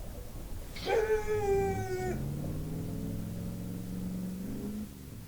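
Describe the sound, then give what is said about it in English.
A man runs his truck engine, starting with a sharp whining burst that holds steady, then settling into a low droning rumble that climbs in pitch over a few seconds. No one speaks. “Goodness, there's a gentleman over there running his truck engine trying to impress no one.”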